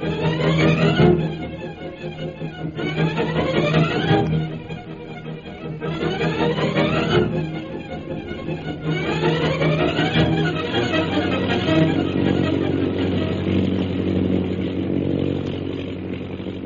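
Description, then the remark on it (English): An airplane engine drones steadily in flight, loud and continuous, with a buzzing tone that swells and rises in pitch every few seconds, as Jungle Jim's plane flies over mountainous jungle country toward Mandalay after refueling in Hong Kong. No voices are heard. “After landing at Hong Kong to refuel, Jungle Jim's plane continues on its journey toward Mandalay.”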